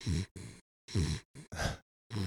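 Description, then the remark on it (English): A dog snores loudly, a run of raspy, fluttering breaths in quick succession, each rough inhale and exhale separated by brief pauses. “Background of this recording is going to be the best ever. Just dog snoring.”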